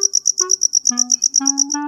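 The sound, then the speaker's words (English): Crickets chirp in a rapid, steady pulse of high, bright trills, about eight chirps a second, singing fast as crickets do when it is warm, while soft tonal background notes shift underneath. “When it's warm, they have more energy, and they sing faster, like this.”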